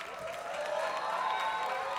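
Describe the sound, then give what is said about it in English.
Steady applause from a concert audience as band members are introduced, here for the bass synth, a dense wash of clapping with a few scattered cheers, fairly soft and even throughout, over a faint sustained musical tone. “Slightly less applause for the bass synth.”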